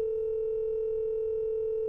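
A phone line rings on an outgoing call to the chair of Howard University's History Department: one steady, unbroken electronic tone at a mid pitch holds evenly for about two seconds, with no voices.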